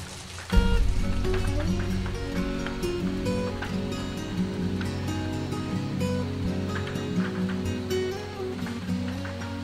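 Steady rain patters and ticks against a window, a continuous close wash of drops layered over soft, sustained musical tones that begin abruptly and hold evenly throughout.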